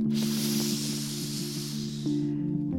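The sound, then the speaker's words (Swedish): A long, airy hiss of breath drawn in through the teeth during chitkari yoga breathing, tongue pressed against the back of the teeth and air taken in at the corners of the mouth, lasting a little over two seconds, over a steady low droning tone that continues after the breath stops. “Och om du inte kan göra det här lilla röret så kan man pressa tungan mot baksidan av tänderna. Då heter det chitkari och då andas man på sidorna av mungipen.”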